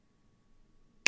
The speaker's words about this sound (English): What are you smashing on your keyboard right now? What am I? Am I? Like, are you hearing something live right now? I'm pretty sure every time you hit your keyboard, I'm hearing it, but...